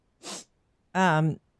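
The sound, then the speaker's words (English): A quick, airy sniffle from a person who has COVID, then after a brief pause a short voiced burst that slides downward in pitch, like a throaty exhale or groan. “Little sniffle you have there.”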